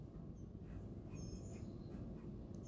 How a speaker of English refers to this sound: Man, these birds are fucking insane. Whew. We get it, it's raining.